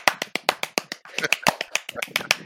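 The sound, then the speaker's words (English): A rapid run of sharp hand claps, about a dozen crisp slaps in quick, slightly uneven succession, loud and dry with nothing else underneath, made as a clap sync mark for a recording. “Let's get a clap mark right here.”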